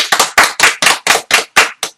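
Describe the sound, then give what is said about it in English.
A short round of clapping for AJ Styles, the new WWE champion: about nine sharp, loud claps in a steady, even rhythm, each with a quick crisp attack and brief ring, and no voices. “Give a nice little shout out to him. A round of applause.”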